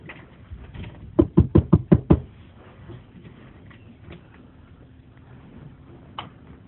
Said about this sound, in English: Okay, I think I'll try knocking one more time and then I'm just gonna go for it.